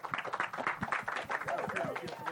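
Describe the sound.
An audience breaks into a steady round of applause, dense overlapping claps with a few voices calling out and cheering above them, holding at an even, fairly loud level throughout.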